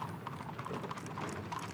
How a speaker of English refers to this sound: Buggy after buggy, horse after horse, person after person showed up, extending the grace of God.